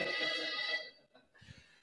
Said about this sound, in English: Yeah, apologies for that. That was my afternoon nap alarm. Forgot about that.